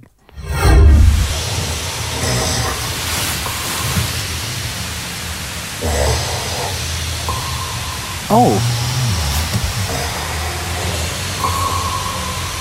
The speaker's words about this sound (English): Have a listen to this. Some guys snore sounds like an echolocator or sonar from a submarine.